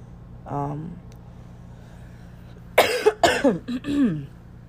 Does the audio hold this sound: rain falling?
no